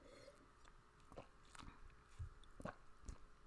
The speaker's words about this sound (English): Because, let me take my little sip of my wine.